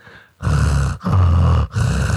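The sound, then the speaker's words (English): A cat breathing heavily, three loud, rough, wheezy breaths in quick succession with short pauses between, each with a grunting, congested rasp. No one talks. “Now I'm just going to fall asleep to heavy breathing cat.”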